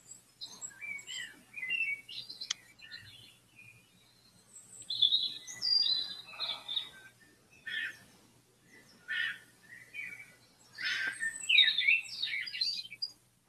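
A phone's birdsong alarm tone plays on its own: bursts of high, bright chirps and warbling trills in several phrases separated by short pauses, over a faint low hum, with no talking.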